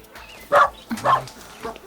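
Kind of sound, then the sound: animal, dogs barking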